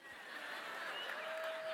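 An audience claps in a steady, dense wash of applause lasting under two seconds, with a faint murmur of crowd noise and light laughter mixed in.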